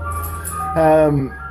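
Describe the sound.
A brief burst of an ice cream van's chime as the van comes around the street, a bright tonal melody note rising out of a steady low engine-like hum, with faint voices underneath.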